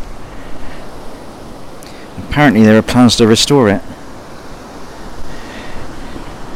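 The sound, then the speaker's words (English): A steady wash of surf and wind noise at Totland Bay, beside a ramshackle pier, fills the whole recording, with someone speaking briefly in the middle over the constant seaside roar. “I'm at Totland Bay, next to the rather ramshackle pier.”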